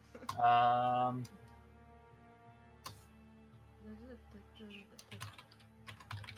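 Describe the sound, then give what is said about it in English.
Irregular clicks of someone typing on a computer keyboard, fairly quiet, with scattered keystrokes after a brief loud voiced sound at the start and faint murmuring in between. “He's typing.”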